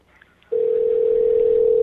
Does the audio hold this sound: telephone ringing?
yes